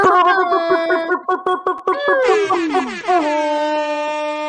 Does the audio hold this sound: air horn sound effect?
yes